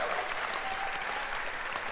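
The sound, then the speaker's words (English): A press conference audience applauds steadily, many hands clapping at once in a dense, even wash of sound with a few sharper claps popping out. The level holds constant throughout and nobody speaks. “But for us, when we're listening, you know, you think, keep talking over the claps because the microphone's going to be a lot louder than the claps.”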